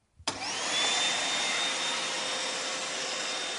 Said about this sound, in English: Okay, well, I guess the next thing to do is turn the Hoover on.